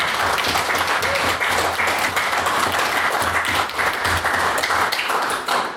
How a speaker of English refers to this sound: can I ask the House please to extend a round of applause to our competitors at the Trinity Women's Open today, who sent down 3 teams and 2 judges, so we just give them a big old applause.